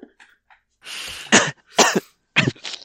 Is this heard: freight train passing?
no